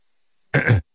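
A single short throat clearing, a raspy guttural burst lasting about a third of a second, surrounded by silence.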